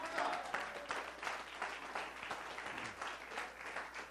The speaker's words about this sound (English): While you're standing, can give God a hand clap of praise.